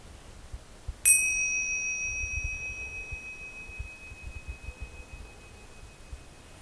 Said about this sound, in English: And we can close the meditation when you hear the bell.